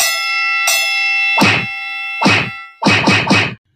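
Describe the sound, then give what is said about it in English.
A laser-style pew-pew transition sound effect: a ringing electronic tone, then a series of sharp zapping blasts, two spaced apart and then three in quick succession, loud with no talking. “I guess we're going to do some slaps of the week and just, you know, a little pew, pew.”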